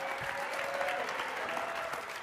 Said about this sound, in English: If you believe it, can you go ahead, clap your hands, give Jesus a mighty hand clap and shout.